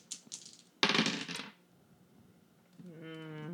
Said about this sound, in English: Rolling three dice in the dice pool. Let's do it.